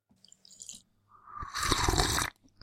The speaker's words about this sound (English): But it's time for our last sip.